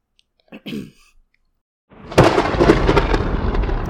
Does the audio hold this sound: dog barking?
no